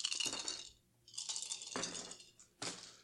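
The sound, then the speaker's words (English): Small spherical dice clatter and rattle across a hard surface in three quick bursts as players roll for luck, bright with brief pauses between throws. “Thank you, spherical dice, for serving me well.”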